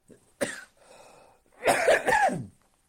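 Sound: coughing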